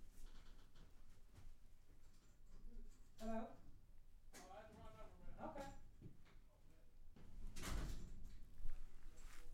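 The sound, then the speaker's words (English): A door is pulled open with a short rattling scrape near the end, while indistinct voices murmur in the background throughout. “You want to open the door and see?”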